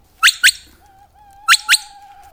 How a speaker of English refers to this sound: So now she'll give a series of whistles.